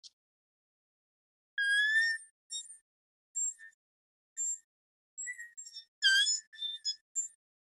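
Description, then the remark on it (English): A latex mouth diaphragm game call, with air let seep across the latex, gives a series of thin, high-pitched squeals and whines like a mosquito, about eight short bursts in an uneven rhythm with brief silences between, fairly faint, with no talking. “Then you're going to relax your tongue just a little bit and let some air seep across that latex on the diaphragm, and just enough to make where it makes a little noise, kind of like this.”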